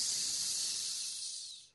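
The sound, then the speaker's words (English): A sustained, sharp snake-like hiss, loud, holding steady for under two seconds before trailing off. No voices accompany it. “And you instantly should be going, boo, hiss.”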